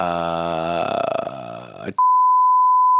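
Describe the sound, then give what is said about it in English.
A drawn-out vocal sound gives way abruptly to a loud, steady, high-pitched censor bleep that cuts in and holds unbroken for about a second until the end. “that wouldn't work because I just beeped you out.”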